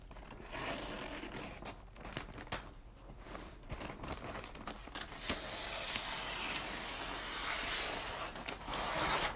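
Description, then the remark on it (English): Scissors cut through material to be wrapped around a clock, a continuous crisp, rasping snipping mixed with rustling and crinkling that grows denser and louder toward the end, with no voices. “Scissors.”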